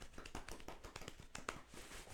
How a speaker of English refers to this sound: That's us clapping. That's not us winking it. That's clapping. It sounded like winking it. It's just, it's not that.